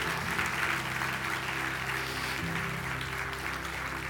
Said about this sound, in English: Would you give God a hand clap of praise if you received that?